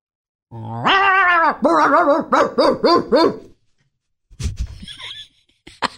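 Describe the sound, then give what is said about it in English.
A person imitates a dog, starting with a long drawn-out growl, then a quick rhythmic run of about six yappy barks, followed by a couple of rough, breathy grunts after a short pause. “Give me, like, because you're pretty good at imitating animals. Give me a dog.”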